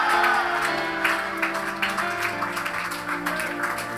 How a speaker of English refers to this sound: Can I hear somebody scream and shout and put their hands together to the Lord?